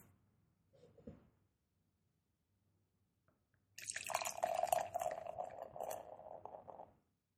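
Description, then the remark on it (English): Beer pours steadily into a glass for about three seconds without overflowing, a gurgling stream with bright fizzing, preceded by a brief soft knock and otherwise quiet surroundings. “And did the beer happen to overflow? No, it didn't”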